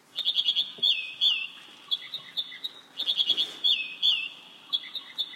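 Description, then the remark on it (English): An American Dipper, also known as Ouzel, a small gray bird, sings bright, high, rapid phrases of repeated chirps and slurred whistles, delivered in two similar bursts, clear over faint background hiss. “our conversation is focused on a small gray bird, the American Dipper, also known as Ouzel.”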